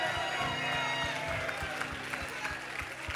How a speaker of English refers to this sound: Now, everybody give him the biggest praise that you've given him all day. Can you do that? Come on, everybody. Clap your hands and shout to the Lord Jesus.